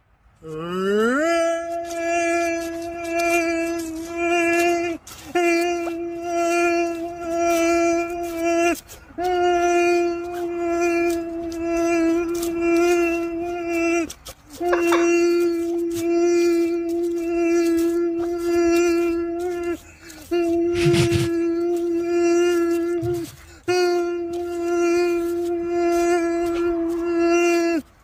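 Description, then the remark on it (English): During a weather segment, a voice imitates a tornado siren with a long, sustained wailing tone that rises at the start and holds steady, broken by brief breath pauses, repeating for nearly half a minute. “Okay, guys, let's do a spin it around and do a tornado siren at the same time.”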